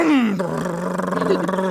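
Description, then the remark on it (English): A voice imitates an engine starting up: a falling buzzy tone that settles into a low, steady, rhythmically pulsing rumble, fairly loud and sustained for under two seconds. “Let me start this engine up.”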